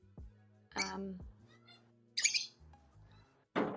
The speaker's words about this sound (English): But here is, so it's a walk-in aviary.